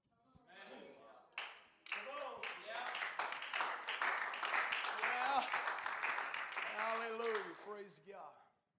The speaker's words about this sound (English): Who was clapping just then?